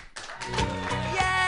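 An audience claps in a steady, dense wash of applause with a few sharper claps standing out, and voices cheer underneath throughout.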